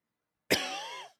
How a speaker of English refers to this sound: That's how I cough.